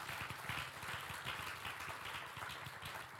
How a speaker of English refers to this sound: A hand clap will be better.